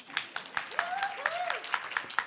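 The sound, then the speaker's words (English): A church audience claps in steady applause for the church staff, with sharp repeated hand claps standing out above the broad clatter, while a few voices rise briefly in the background. “You could clap for that.”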